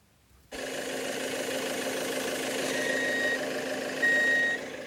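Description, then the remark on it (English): A large vehicle's engine rumbles steadily while reversing, and a high electronic backup beep sounds twice, each tone held about half a second, over the motor noise. “Okay, back up. A little more. That's good. Kill the engine.”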